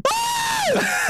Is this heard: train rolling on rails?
no